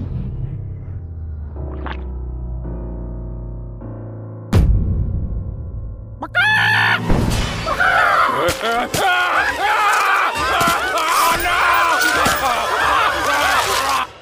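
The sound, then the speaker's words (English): A soft tonal passage breaks off at a sharp impact, then a loud, frantic swarm of angry Cuckoo chickens squawks and flaps in dense, chaotic overlapping bursts that continue to the end. “Wait, so are the Cuckoos after you too?”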